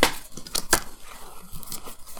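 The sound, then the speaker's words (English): Playing cards shuffled and drawn: a few crisp, papery snaps and flicks in quick succession, then softer rustling and sliding of cards, with no voices. “Gotta keep the shuffle rolling.”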